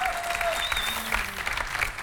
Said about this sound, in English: Can you come out here, guys, for a moment? Let's give the Lord a huge round of applause.